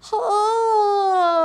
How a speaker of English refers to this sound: Now let's really make big mouth, yawn.